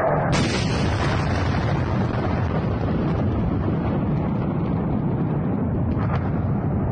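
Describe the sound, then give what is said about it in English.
A massive, sustained explosion with flames roars continuously, a thick low-frequency rumble with crackling bursts throughout, loud, with no voices over it; the sound comes from actual footage of the explosion. “So, and now I'm gonna pull up this right here, which is actual footage of this fucking explosion.”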